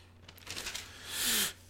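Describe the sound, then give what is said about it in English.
Thin paper pages of a Bible being flipped to 1 Peter chapter 5: a quick series of soft rustles and flutters that ends in a louder, longer swish of a page turning over, with no talking. “I'm turning there, listen to the pages turn.”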